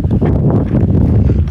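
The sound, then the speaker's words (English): Steady, loud wind buffets the microphone during a walk on a cold, surprisingly windy day, a deep rumbling roar with gusty fluctuations that fills the whole moment without a break and no voices. “It's actually kind of surprisingly windy.”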